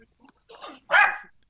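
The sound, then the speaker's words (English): A female dog, looking out a window at something, gives a short, rising whine followed by one loud, sharp bark, with no talking over it. “She's been quiet this entire time, and now all of a sudden she has to look out the window and see something.”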